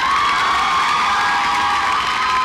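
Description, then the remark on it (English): A crowd cheers and whoops with some scattered clapping, a loud, steady wash of voices that stays at the same level throughout, with no one speaking, at Bark Your Biz 2019 at the Global Pet Expo in Orlando, Florida. “That's called a smattering of applause, if you're a golfer, you know, golf.”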